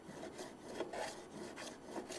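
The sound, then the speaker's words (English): Repeated rasping strokes of a hand plane, held skewed, shaving and shaping a curved piece of wood: a steady rhythm of short scraping passes with bright, hissy texture, moderately quiet and with no talking. “So you come in and Again, I'm holding the plane kind of skewed.”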